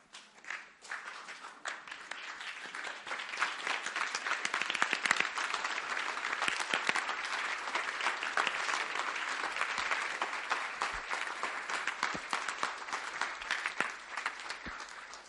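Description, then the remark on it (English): An audience applauds steadily for about fifteen seconds, a dense, even patter of many hands clapping that swells quickly after the first second and holds at a moderate, sustained level. “clap is very weak.”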